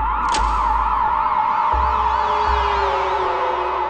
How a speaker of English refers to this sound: There was so much noise. You're waking up, like, what's all these sirens everywhere? It's nonstop.